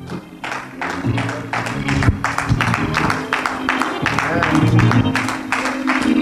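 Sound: audience clapping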